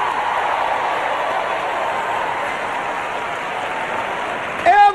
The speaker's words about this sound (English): Come on, clap your hands, all you people. Hey!